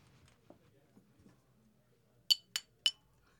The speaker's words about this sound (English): Yeah, it's time. That bell means it's time.